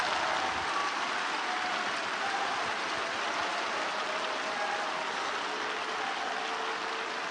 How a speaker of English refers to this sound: Clap your hands to the Lord.